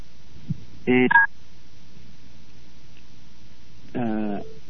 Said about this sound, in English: Something's going on. I'm getting all kinds of beeping. Can you guys still hear me? My sound clicked off here on the phone for a second.